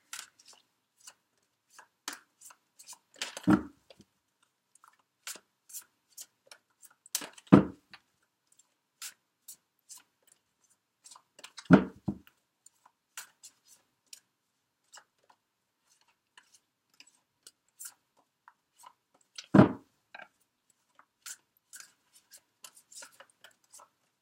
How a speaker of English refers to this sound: I'm just going to shuffle a bit more as I tune into the area. The energies for Aquarius.